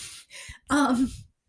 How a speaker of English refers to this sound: oh my gosh, this dog is really snoring.